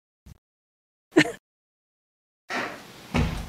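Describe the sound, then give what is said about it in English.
A new door, treated with bug spray, is opened and shut without any squeak: a small click, a dull thud a second later, then a longer, louder brushing swish near the end, otherwise quiet. “Our new door is squeaky, too.”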